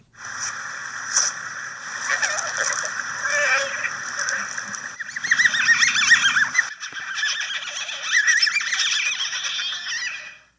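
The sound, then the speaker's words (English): North American river otters vocalizing in a busy mix of high whines, chirps, squeaky calls and chattering bursts, with a few breathy blows and a low rattling growl midway; no one talks over them. “What we just heard included the blow, the whine, the chirp, the chatter chirp, and the squeak.”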